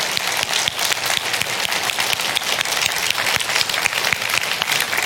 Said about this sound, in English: If you serve in any capacity on helps team, stand up and give each other a hand clap. Come on. Woo!